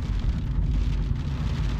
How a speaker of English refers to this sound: The rain, it's starting to come down. We're so lucky we got inside. Wow. My goodness. The rain looks gorgeous.